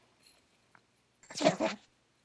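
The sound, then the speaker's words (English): A person briefly imitates a cat purring, a breathy, rolling burst lasting about half a second after a near-silent stretch, with no talking. “You know, you realize that we now have a recording of you purring, right?”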